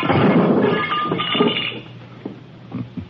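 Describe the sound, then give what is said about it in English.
A lamp smashes with a loud crash of breaking glass, followed by scattered tinkling and clinking pieces that settle and fade over a few seconds. “So you smashed the lamp.”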